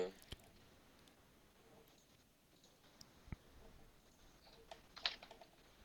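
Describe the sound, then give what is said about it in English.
Scattered soft clicks of someone typing on a computer keyboard, a few irregular keystrokes spread out over a quiet background, with a small cluster near the end. “I was typing it in wrong, and then I was like trying to find the actual promo.”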